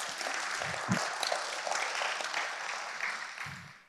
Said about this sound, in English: Come on, clap your hands to him this morning.